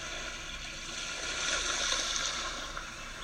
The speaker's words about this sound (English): Notice the sounds of the sea one last time.